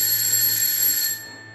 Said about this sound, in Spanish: En esas sonó el timbre.